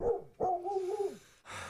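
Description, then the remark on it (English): A dog named Agnes, the family's dog, barks: a short bark, then a longer, drawn-out bark that bends slightly in pitch, followed by a brief burst of noise. No one speaks. “That's their dog, right?”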